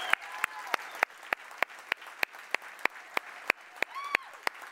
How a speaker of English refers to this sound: Hold on, because you're going to clap for the next thing. I preached a message, and then 3 people received Christ.